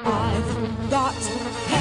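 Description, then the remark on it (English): A mosquito buzzes loud, a steady droning whine that wavers slightly in pitch without stopping, heard alone with no voices. “It's time to mount a counterattack on mosquitoes and reclaim your yard.”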